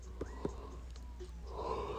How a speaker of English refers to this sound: Oh, shit. Yeah, yawning.